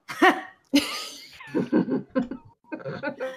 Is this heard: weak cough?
yes